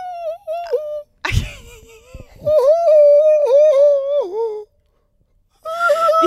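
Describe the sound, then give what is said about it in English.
A voice imitates a scared, crying bird while practicing a reverse whistle, pushing air out: sustained, quavering whimpers that waver and dip in pitch, broken by a short breathy rasp, then a pause and one more wail. “You sound like a scared bird.”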